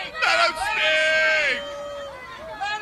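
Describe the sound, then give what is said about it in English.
Crowd hubbub at a school meeting, with one loud, strained male voice shouting over the murmur of many people for a few seconds after his microphone is cut off, before it fades back into general noise. “The crowd should have tried chanting that thing, dude.”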